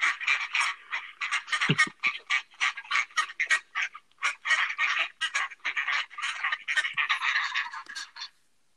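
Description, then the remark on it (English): A duck quacks rapidly and repeatedly in a long, steady run of raspy, nasal calls, loud and continuous for about eight seconds before stopping abruptly, with no talking. “No, it was a duck.”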